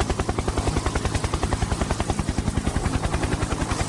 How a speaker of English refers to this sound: The chopper sat down on an old, cracked road. It hadn't been repaved or used in a very long time. We all hopped out and the chopper lifted back up again.